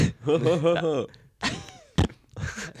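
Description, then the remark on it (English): Someone imitates a fart with their mouth: a buzzy, wavering vocal blurt lasting about a second, followed by more voiced sounds and a brief thump. “First fart noise on the pod.”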